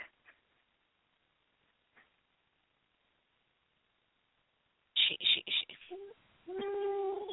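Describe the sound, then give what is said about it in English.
A few faint clicks, then the tinny speaker of an electronic So Soft newborn Sunny Days baby pony plush toy bursts in loudly with several choppy squawks, followed by a steady, warbling synthetic tone at the end. “then "So soft newborn Sunny Days." And it's terrible.”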